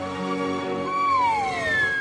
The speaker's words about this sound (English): Ladies and gentlemen, with a special solo. On the slide whistle. On the slide whistle. Sure. Mr. Todd Glass. Can I have reverb, please?